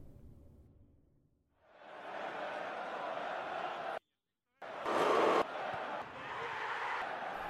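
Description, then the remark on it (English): A broad wash of simulated crowd sound effects, suffering technical difficulties, swells in after a quiet, low start, cuts out abruptly to silence for about half a second, then returns louder with a brief peak before settling into steady murmuring. “Apologies for the technical difficulties we're having with these simulated crowd effects.”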